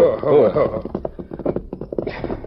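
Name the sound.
horse hooves clip-clopping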